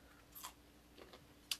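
Someone crunches into a pickle soaked in moonshine, with a few crisp, irregular bites and chewing crunches at a soft level. No one speaks.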